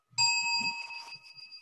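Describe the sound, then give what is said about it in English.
A single meditation bell is struck once to say goodnight at the end of a practice session, its bright metallic ring sustaining with several steady tones that slowly fade. Some soft low thumps sit beneath it, with no voices. “Maybe I'll ring the bell here as a way to say goodnight.”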